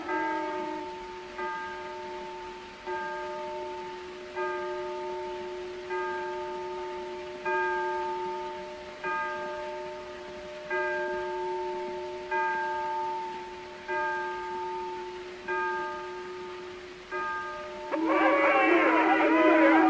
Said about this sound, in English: Hear a word you say on account of those damn bells. Hey, boys, it's 12 o'clock. Happy New Year.